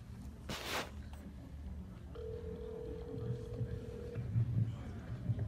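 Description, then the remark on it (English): An outgoing phone call to a guest rings: one steady ringback tone lasting about two seconds, heard over quiet murmur, with a short burst of rustling noise just before it. “Come on, Charlie, answer the phone.”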